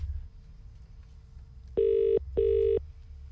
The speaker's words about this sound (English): Just going to phone a sandwich shop. This is the New York Deli in Christchurch.